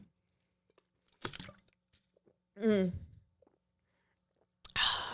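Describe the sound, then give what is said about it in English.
Drinking water: a wet slurp and swallow, a short voiced exhale, then another burst of liquid sloshing, with quiet pauses between. “Let's give a big round of applause for some fucking water.”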